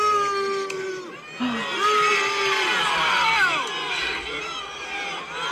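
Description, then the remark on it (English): A crowd boos King Charles loudly and continuously, with some people booing those who boo him: a dense wash of many overlapping voices with rising and falling wails, holding steady for several seconds after a brief dip. “Some people are booing at Charles. Some people are booing at the people booing at Charles.”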